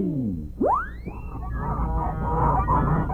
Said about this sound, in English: Well, since our story is the Goose Girl, how about a flock of giant wild geese flying north?